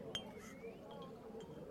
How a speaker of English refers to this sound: Wow, the diamond ring shattered.